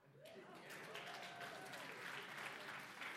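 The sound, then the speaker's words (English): A room full of people claps steadily, a dense, sustained patter of applause throughout, with a voice faintly audible underneath near the start. “No applause?”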